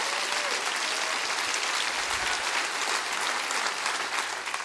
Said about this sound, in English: Come on. Let's just clap our hands real big because Jesus is in the house here today. Come on, clap your hands real big.